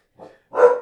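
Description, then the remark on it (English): A household dog acting as a watchdog lets out a quick, muffled woof followed by a louder, fuller bark, both short, with no talking. “Our dog has become a de facto sentry. Sentry watchdog.”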